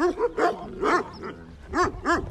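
A puppy among sheep barks repeatedly in short, high-pitched yips, about six quick barks in an uneven rhythm, clear with no talking.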